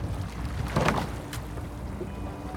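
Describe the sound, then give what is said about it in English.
A rowing boat, rowed by a blind woman, glides through water, with a swelling splash of an oar stroke near the middle and a quicker swish afterward over steady low water and wind noise. “It's the only time in my waking hours that I can forget that I'm blind is when I'm in a boat rowing, because it's all about the feel, the sound.”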